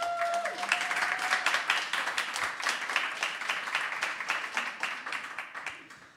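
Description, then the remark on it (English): An audience applauds the panelists of a session, many hands clapping in a dense, crackling wash of sound that holds for several seconds before tapering off slightly at the end, with no talking over it. “Let's have a round of applause for our panelists.”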